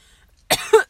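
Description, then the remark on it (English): Two quick, harsh, loud coughs in close succession from a person smoking from a bong, the second with a rougher throaty catch. Silence before them, with no talking. “I hate how much I cough, though.”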